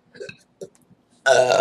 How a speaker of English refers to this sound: We have Tremont Rhino says, thrown in this, belch off. Oh, crap.